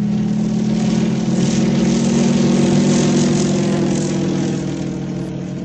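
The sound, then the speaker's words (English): A propeller aircraft drones steadily overhead, its loud engine hum holding a strong low pitch throughout before easing off slightly near the end. No voices are present. “In the air.”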